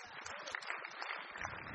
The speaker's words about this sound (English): The reason I ask you to put your hands up, thank you, let's give the ones that put their hands up for their partner, give them a clap.